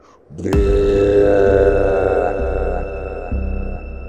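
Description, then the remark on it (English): A deep, monstrous roar of an ice giant, a huge creature at an icy ruin, bursts in and holds for about four seconds: loud, rough and guttural, dipping slightly before surging again near the end. No voices. “And as you move closer to the ruin, you hear a roar.”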